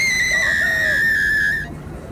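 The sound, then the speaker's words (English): A woman's single high, piercing scream at the burned-out ruins of a house, held at a steady shrill pitch for under two seconds and then cut off abruptly, loud, with no talking. “Then the woman screamed.”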